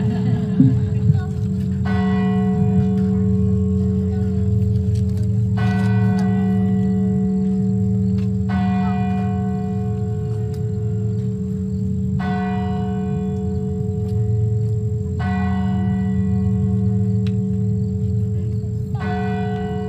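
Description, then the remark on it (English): A large bell tolls slowly and repeatedly, about every three seconds, each strike ringing out with rich lingering overtones over a steady low hum in the background. “We'll be reading after the bell rings.”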